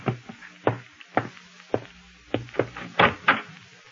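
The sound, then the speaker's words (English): Someone knocks on a door, about eight solid raps in uneven clusters, the last few quicker and louder, with no voices. “Oh, excuse me. Someone's at the door.”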